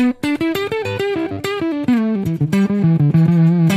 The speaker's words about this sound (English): But so here. So you're just adjusting the octave. So now it'll actually turn into a bit of an octave fuzz.